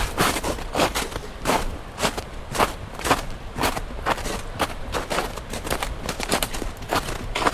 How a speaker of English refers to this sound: Footsteps on snow. They clambered down the cove towards the sea.